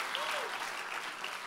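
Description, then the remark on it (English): A crowd applauds steadily, the dense clapping filling the space at an even loudness throughout, with a faint voice rising briefly underneath near the start. “Come on, you better clap like God already did it. Come on, clap a little louder.”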